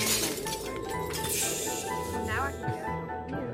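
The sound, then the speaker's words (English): A frozen creature falls over and shatters like ice with a bright, brittle crash and scattered tinkling fragments, set against a dense, busy wash of other sounds and a faint voice in the background. “It freezes and falls over and shatters.”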